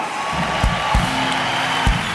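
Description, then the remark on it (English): An audience shouts and cheers "yeah" and "Hallelujah" after a prayer, in a dense, steady roar of many voices, with a few dull low thumps breaking through over about two seconds. “And everybody shouted and said, yeah. Hallelujah!”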